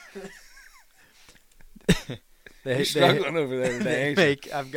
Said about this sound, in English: trying to avoid this coughing fit.